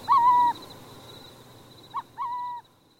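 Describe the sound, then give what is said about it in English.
Burrowing owl calls sound alone at a former depot with artificial burrows: a long tonal coo, a pause, then a short note quickly followed by another drawn-out coo, over faint background hiss. “Unlikely as it may seem, this former depot is now a burrowing owl boomtown.”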